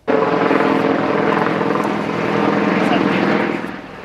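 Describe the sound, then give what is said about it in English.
A helicopter roars loudly as it lands at Sandringham Estate, the Queen's private country home, believed to be carrying the 98-year-old Duke of Edinburgh. Its engine and rotor noise is a steady, dense drone that holds throughout and eases slightly near the end. “A helicopter believed to be carrying the 98-year-old was seen landing at Sandringham Estate shortly after he was released from hospital.”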